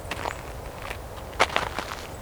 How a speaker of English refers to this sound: You can kind of hear all the birds foraging a bit, flipping over leaves, picking at things, picking at dead leaves.